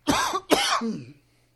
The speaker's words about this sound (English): Why am I coughing?